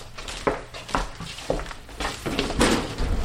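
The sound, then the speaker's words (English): A drawer of an insect specimen cabinet is pulled open, with a few sharp wooden clunks and rattles followed by a longer scraping slide, with no talking. “walks to one of the cabinets and pulls open a drawer.”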